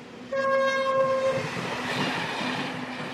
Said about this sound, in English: we could hear the express train coming. The train always whistles as it comes around the corner.